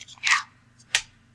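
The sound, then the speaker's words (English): A voice imitates a knife chopping on a cutting board with a couple of sharp, hissy mouth clicks, spaced unevenly and fairly faint, with no talking. “Is she done ruining her cutting board? I don't have a pencil. I was making that noise with my mouth.”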